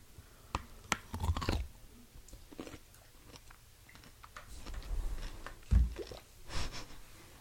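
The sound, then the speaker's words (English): Chewing on a bite of pickle: a few sharp, crisp crunches early on, then wet, irregular munching with soft smacks, loud, with no talking. “Let me take another bite.”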